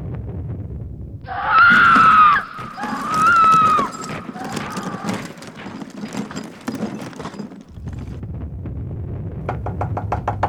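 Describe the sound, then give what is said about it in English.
A loud, wavering scream rings out from a room next door, then a flurry of sharp knocks and thumps against that room's door as people knock to check on the woman inside, with another quick burst of rapid knocking near the end. “she wasn't answering when we knocked on her door to check.”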